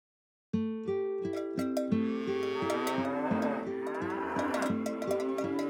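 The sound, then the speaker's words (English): A herd of cows grazing in a pasture lowing, deep drawn-out moos overlapping one another almost continuously, loud and steady with no voices present. “In December 1765, two French teenagers watched a herd of cows graze in a pasture.”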